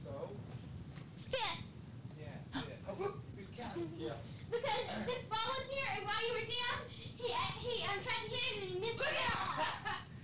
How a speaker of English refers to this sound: These are just kids playing pool. Down in the rumpus room.